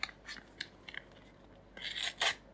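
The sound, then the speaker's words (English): A few quick scissor snips, then two longer rasping cuts through packaging material as a package is cut open. Fairly quiet, with no voices. “I'm gonna get scissors.”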